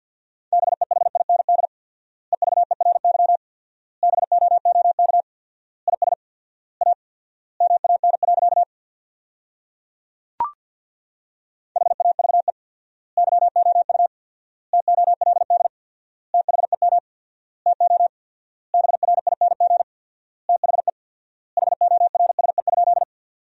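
Fast Morse code at 50 words per minute with 4x word spacing, sending sentences from the top 500 words: one steady mid-pitched beep keyed on and off in rapid bursts, grouped into words separated by short gaps, with a longer pause and a single click midway. No voices.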